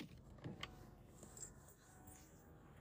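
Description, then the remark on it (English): A car's power window motor hums steadily as the glass rolls up, quiet, with a couple of small clicks near the start and no voices. “Here, I'll roll up.”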